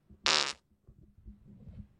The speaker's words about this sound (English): Yeah, I'm still going to go pee and then I might rip a fart into the mic real quick. Hold on.